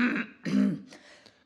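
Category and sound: human body sound, suppressed cough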